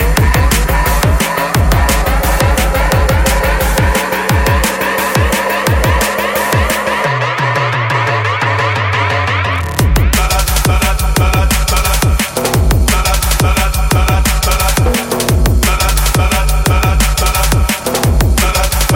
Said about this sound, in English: You're listening to some low frequency waveforms.